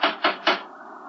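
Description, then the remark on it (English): Three heavy, evenly spaced knocks from a huge brass door knocker on the front door of a house in the New England countryside, during a thunderstorm, each a sharp metallic thud, followed by a fading resonant hum with no voices. “There was a huge brass knocker.”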